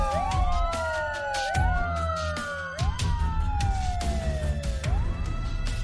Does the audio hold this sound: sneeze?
no